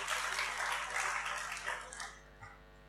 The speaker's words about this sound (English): Yeah, round of applause for our wonderful model,